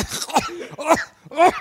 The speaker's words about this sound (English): But these are dry. What do you do with cereal? You're going to have a coughing fit.